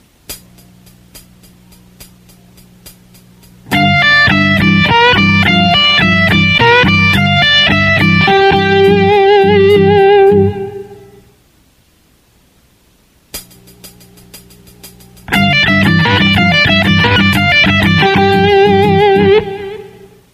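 In a guitar lesson example, a distorted electric guitar plays a short phrase that settles on a sustained note with wide, wavering vibrato, played with the wrist locked; after a pause, the same loud passage repeats over a faint amp hum.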